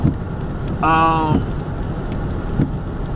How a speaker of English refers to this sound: It's raining out here today.